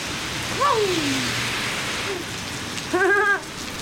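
pouring rain

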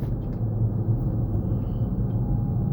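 car interior road noise

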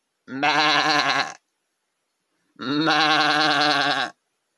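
sheep bleating

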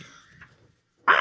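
crows cawing outside

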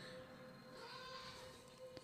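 goat bleating

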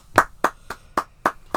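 clapping

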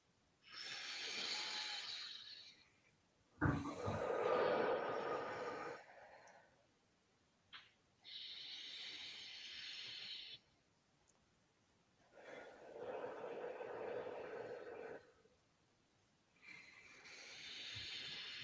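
three deep breaths

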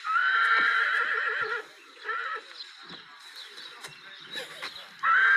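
horse neighing

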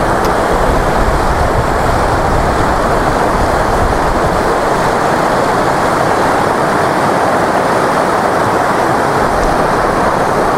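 waterfall rushing water

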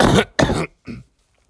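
throat clearing

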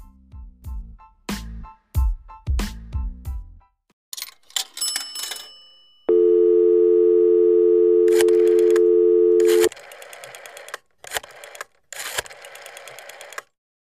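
telephone line ringing

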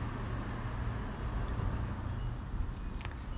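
car passing by

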